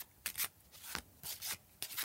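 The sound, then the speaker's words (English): Playing cards, value and joker cards, being shuffled together: a few quick, papery swishing bursts in an uneven rhythm, soft, with no talking. “Now shuffle the value and joker cards together.”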